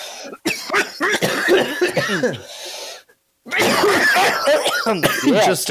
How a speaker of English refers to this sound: Just an hour podcast of us coughing.